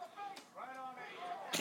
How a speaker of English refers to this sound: I haven't had to take a drink during the end of the match, which has been much needed, because now I have the hiccups.